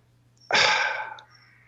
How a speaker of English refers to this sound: The crows agree. Yes. Whatever you say, the crows are in.